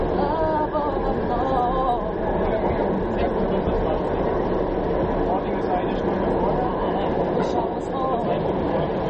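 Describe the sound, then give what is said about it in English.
A steady, loud rumble of a subway train in motion fills the whole recording, with indistinct passenger chatter and voices murmuring underneath the constant roar. “Right, so you know nobody on that train heard her.”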